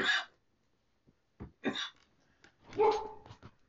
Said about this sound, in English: See, this is why you don't have a beautiful door that shows light, because then your blind dog be like, what is that? Look at everybody that's walking by. No, go lay down. Go lay down.